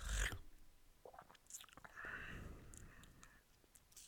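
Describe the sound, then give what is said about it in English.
Crunchy chewing of crab, with sharp cracking bites at the start and repeated wet, crackling munches through the rest, loud with no talking. “But do you reckon your next bite of that crab, you could sort of, you know, just really chew it? Like, really crunch into it, you know?”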